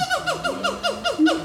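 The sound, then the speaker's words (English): A person mimics a gibbon with a run of rising and falling whooping hoots, about five repeated swoops in quick rhythm, moderately loud with no other talking. “And you do a very good gibbon call.”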